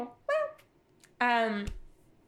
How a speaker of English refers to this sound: Zara just agreed with me if you didn't hear that meow.